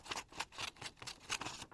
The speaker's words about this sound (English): Next, you're going to cut out the circular shape with your scissors.